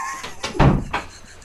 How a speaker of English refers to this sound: I'm going to shut the door.